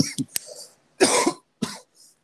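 A person with COVID coughs several times in quick succession, harsh, with a couple of brief pauses between the bursts and no talking.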